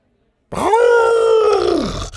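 A single drawn-out, loud howl from Buck, an excited dog, lasting over a second with a steady tone that swells in and then slides downward at the end. No one speaks.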